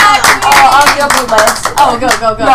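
A crowd applauds with dense, steady clapping, loud throughout, while several voices whoop and cheer over the clapping.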